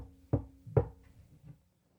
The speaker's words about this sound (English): where's the knock coming from? It appears to be behind you.